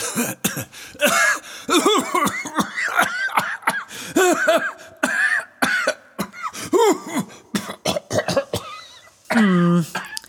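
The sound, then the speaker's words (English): A prolonged, exaggerated, staged coughing fit: loud, throaty hacks and wheezy voiced coughs in rapid irregular bursts, with brief gasping pauses, going on for about ten seconds. “If you're playing for sympathy by staging a coughing fit, it's not going to work.”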